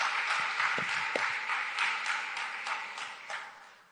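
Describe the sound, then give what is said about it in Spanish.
An audience applauds the Lord together, a dense, steady wash of many hands clapping with a few sharper claps standing out, holding for several seconds before gradually fading at the end. “¿Pueden darle un aplauso al Señor por eso?”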